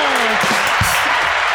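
A loud, steady burst of audience clapping, a dense wash of many hands that keeps going without a break, with faint voices mixed in underneath.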